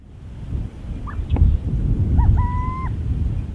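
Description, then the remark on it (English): A small owl calls with a few short, rising whistled notes followed by a longer, steady whistle, fairly clear above a constant low rumbling background. No one speaks. “Tiny Owls”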